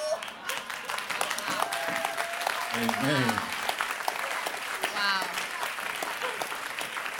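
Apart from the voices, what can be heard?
audience clapping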